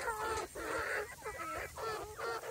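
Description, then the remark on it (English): Several chickens perched on top of a person cluck in a steady run of short, overlapping squawky bursts, fairly loud and busy, with no one speaking. “When did I become a perch for chickens?”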